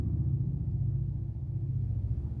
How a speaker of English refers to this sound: Excuse me. Wait a minute. My motorcycle didn't turn off all the way.